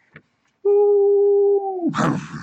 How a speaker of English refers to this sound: These sounds of wolves in the distance.